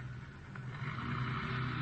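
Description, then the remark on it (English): A car turns around and drives back the way it came, with a steady low engine hum and road rumble, growing slightly louder over the short stretch, with no voices present. “Parker's turning around, heading back the way he came.”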